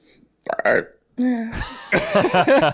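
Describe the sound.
A loud, close-up burp rumbles out after a brief vocal sound, followed by breathy, voiced exhaling noises.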